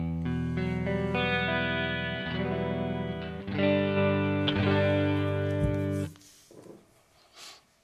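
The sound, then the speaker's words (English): Sustained electric guitar chords ring out through switched effects, shifting through phaser, wipe, warbling chorus and sweeping flanger textures with the same reverb throughout. They then cut off abruptly near the end, leaving a faint decaying tail. “Then the wipe. Chorus. And a flanger.”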